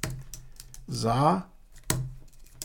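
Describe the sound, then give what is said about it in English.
A handful of scattered keystrokes click on a computer keyboard, with a short voiced murmur rising briefly in the middle before the tapping resumes. Someone is typing "Hadid" to look up Zaha Hadid Architects. “So I'm going to type in, see what that's all about.”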